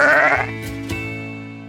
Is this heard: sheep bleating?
yes